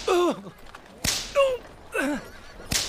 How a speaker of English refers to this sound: Sailors, take heed. If you don't want to feel the lash of a whip across your back.